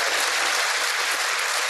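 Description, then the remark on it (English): Steady, dense applause from a large crowd in a US legislative chamber, many hands clapping at once in a continuous wash of sound with no voices over it. “Not even a clap from that side of the aisle.”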